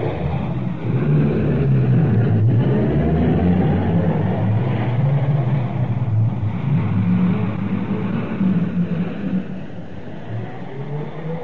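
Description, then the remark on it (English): Ambulances and cars pull out of a London station in response to an air raid warning, heading to 114 High Street, with a loud, steady engine rumble that shifts slightly in pitch as they drive off, continuous throughout with no voices. “They're all in the cars now. They're out of the station already.”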